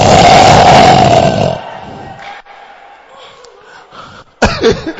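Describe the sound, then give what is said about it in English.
A voice imitates loud snoring: a long, harsh, rumbling roar for over a second, then a quieter breathy stretch, ending with another short growling burst. “Your snoring is also known. It looks like a hippopotamus that has come from the Philippines.”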